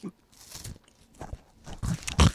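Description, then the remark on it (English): Close-miked pig noises made by a human voice, a string of irregular snorting, chewing-like bursts that grow louder toward the end, with no words spoken. “That's not Foley. That's doing pig noises into the mic.”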